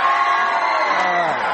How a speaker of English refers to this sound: Make some noise if you're excited that summer is only two months away.